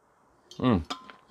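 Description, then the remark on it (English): A glass clinks lightly, followed by a quick sip and swallow of water with a short, low voiced murmur, then a couple of faint clinks as the glass is set down. “Oh God, let's try that one again after a sip of water.”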